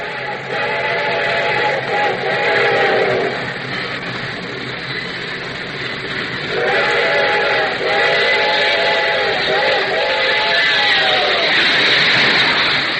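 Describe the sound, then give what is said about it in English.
A train whistle blows two long, wavering chord blasts, the second longer than the first, over a constant loud rumble and hiss of a moving train. “I think it's about time that perhaps we turn the clock back and listen to an excerpt from Grand Central Station.”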